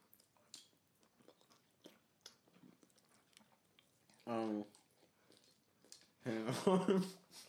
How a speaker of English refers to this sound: If you think people can't hear us chewing, you're insane. You're sucking on a bone over there. I was not sucking on no bone.